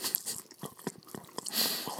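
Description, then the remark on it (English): Wet chewing of a dense, dry meat bar with berries in it, with a steady run of soft crunches and squelchy mouth sounds repeating roughly every quarter second, loud with no talking. “You think people out there in the world, like, listen to us chew on meat bars?”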